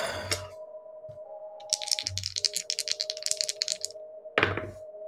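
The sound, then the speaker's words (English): Dice are rolled for an alertness check: they clatter in a rapid run of sharp clicks for about two seconds, framed by a few dull thunks, with a steady low electronic hum underneath and no talking. “I want you to roll me alertness.”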